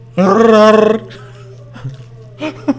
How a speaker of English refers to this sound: You hear that that's, howling? That's a wolf.